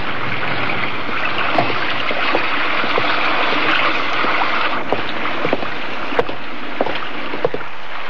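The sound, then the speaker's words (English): A boat engine runs steadily at full throttle on the water, a continuous rushing drone with scattered sharp clicks and splashes over it, with no one speaking. “Something must be wrong with the engine. She sounds fine.”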